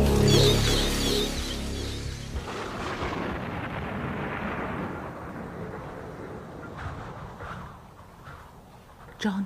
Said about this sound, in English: Wind's getting up again. Forecast was pretty bad.